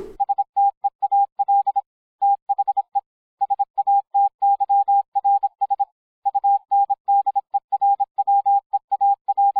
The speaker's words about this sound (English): could you just edit in Morse code for steal the satyr's underwear, please?